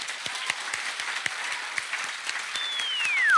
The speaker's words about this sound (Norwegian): Men nå en stor applaus til kveldens gjest, Erling Sandmo.